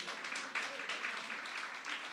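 An audience applauds a woman scientist who has been called up to come forward. The applause is a steady, dense, even wash of many hands clapping that holds at a constant level for a couple of seconds, with no voices standing out.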